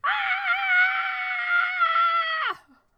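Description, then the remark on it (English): A person screams in one long, sustained, high-pitched note for about two and a half seconds, loud and steady, then breaks off abruptly into silence. “What in what part of Alice in Wonderland is there a scream?”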